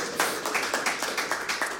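Applause for a singer in Australia, a round of steady, rhythmic clapping, with sharp claps repeating at an even pace over a soft background wash. No one speaks.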